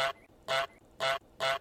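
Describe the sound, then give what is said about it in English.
A goose honks four times in a steady, evenly spaced rhythm, each call loud and nasal, with brief silence between them. “So let's bring that up. Let's hear the goose egg.”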